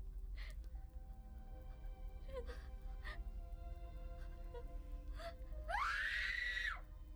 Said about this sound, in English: Seeing the ghost is crying, screaming. Yeah, you're right. It's the same scream every time. It's the kind of breathing and then that.